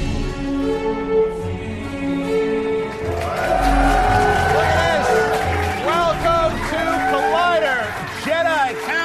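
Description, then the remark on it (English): A crowd of many overlapping voices chatters and cheers at a Denny's restaurant on May the 4th, the din swelling into a louder, excited hubbub after a few seconds and staying busy to the end. “We have a whole crowd here.”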